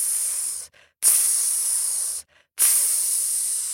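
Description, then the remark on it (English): A voice imitates a snake's hiss in three long, sharp, breathy bursts separated by brief pauses, fairly loud, with no talking. “And out of the waters came her sister, the snake. Tss!”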